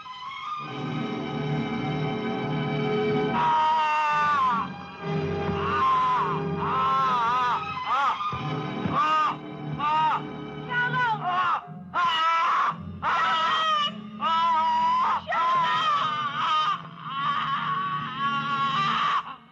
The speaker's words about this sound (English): But he's just freaking, the screaming is straight out of, like, the Twilight Zone or something. It was just bizarre.